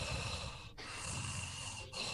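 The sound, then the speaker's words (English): Heavy, raspy breathing of a sleeping pet, recorded with the microphone up close, with a slow, struggling rhythm of long noisy breaths separated by two brief pauses. No one speaks. “Heavy breathing, just really struggling.”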